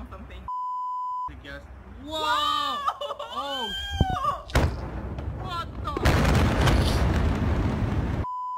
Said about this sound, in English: So this was the explosion.